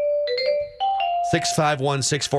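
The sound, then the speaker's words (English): A short ESPN baseball radio chime jingle of a few bright, stepped notes rings out clearly during a radio show, then a man's voice begins talking right after it ends. “So 8 times during our show, 2 times every hour, whenever you hear the ESPN baseball chimes, we're going to give away a copy to, let's say, the 5th caller.”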